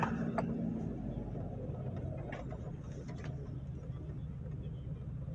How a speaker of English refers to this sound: Hello, mail truck.